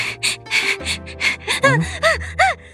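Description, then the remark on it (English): A woman having a nightmare breathes in a rapid series of heavy, ragged gasps, fairly loud; the later breaths turn voiced, with short rising-and-falling whimpering cries, like panicked sobbing. “And she starts breathing really, really heavy. And it's almost like her breathing starts to sound like she's crying.”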